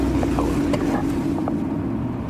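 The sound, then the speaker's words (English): A Toyota Camry's engine hums in a steady, loud low drone with road noise as the car accelerates toward 70 on a closed testing ground, with faint rattles and no one talking. “But you can see, I'll get it up to 70.”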